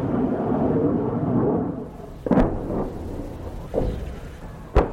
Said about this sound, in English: Those were the sounds of Turkish jets taking off and of explosions across the border in Syria.